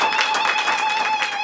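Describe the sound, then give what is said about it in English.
An audience claps together as a clap offering to the Lord, a dense, steady wash of applause, loud and continuous throughout, with a faint sustained tone ringing underneath. “Give the Lord a clap offering. A better clap offering.”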